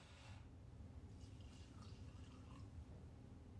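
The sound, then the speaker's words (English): Carbonated Everclear is poured steadily, with a soft, continuous bubbling hiss and faint splashing over a low background rumble, fairly quiet. “So let's go ahead and pour up some of our...”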